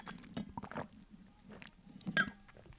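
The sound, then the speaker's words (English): Soft ASMR-style water drinking: a handful of wet sips and gulps with moist mouth clicks, arriving in irregular bursts against a quiet background, with no talking. “Some ASMR water drinking for you guys.”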